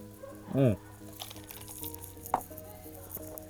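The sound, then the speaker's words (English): Someone takes a quick sip of a drink, with a short, throaty gulp followed by a faint wet click a moment later, over a low steady hum. “hang on a second, I gotta take a sip here.”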